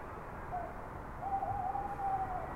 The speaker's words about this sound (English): I like the night owl's lonely call and wailing sound of wind around.